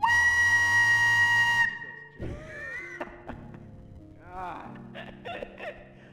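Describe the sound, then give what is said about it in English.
A voice imitates a cartoon train whistle with a loud, steady, buzzy tone held for almost two seconds, followed by softer vocal noises and bits of talk. “It was like those train whistles in the cartoons.”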